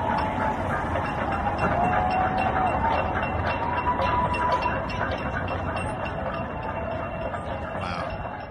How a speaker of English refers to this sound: about wanting everyone to go out to their balcony 7 p.m. as caretakers are getting off their shift and cheering for all the first responders that are out there. So here's a clip of what it sounded like in New York City on Friday night at 7 p.m.